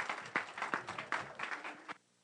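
A short burst of audience applause, a crowd clapping with dense, irregular slaps for about two seconds before it stops abruptly. No one speaks over it.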